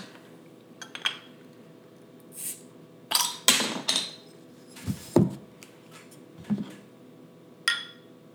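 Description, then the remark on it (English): A bottle of amber imperial ale with cinnamon being opened amid scattered clinks of glass and metal, with a short cluster of sharp snaps and a brief fizzing burst near the middle, fairly quiet, no voices. “All right, so should we crack it open? Crack it open.”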